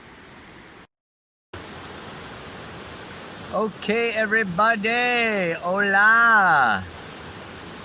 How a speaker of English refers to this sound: The rainy season in Costa Rica. Where I am sitting right now, I'm in the middle of the creek.